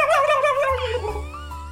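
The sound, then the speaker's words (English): A person mimics a turkey gobble with a loud, warbling, high-pitched voice that wavers rapidly and slides downward for under two seconds, ending with a low hum underneath. “wait, what's your turkey sound like?”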